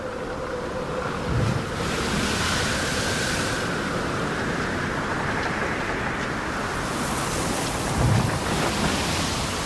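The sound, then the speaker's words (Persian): A continuous roar of rough sea fills the scene, broad and steady, with heavy surges swelling at two moments as storm waves crash and toss a boat amid howling wind and stormy noise. No voices. “صدای فریاد و دعا در صدای زوزه باد و موجها می پیچید.”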